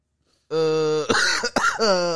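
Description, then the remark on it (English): Loud throat clearing: a drawn-out voiced rasp breaks into a couple of harsh, sharp coughing bursts, ending on another strained, throaty vocal sound. “Quit coughing on the podcast.”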